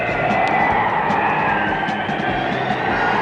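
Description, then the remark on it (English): A strong gust of wind roars steadily for a few seconds, a loud, dense rushing noise with a faint whistling tone drifting through it and no voices. “It sure is windy out there. Weather person didn't say anything about so much wind today.”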